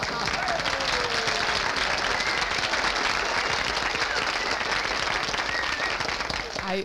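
Steady, dense applause sound effect, cued to welcome a guest, many hands clapping at once in a continuous loud wash that holds level for about seven seconds with faint cheering mixed in.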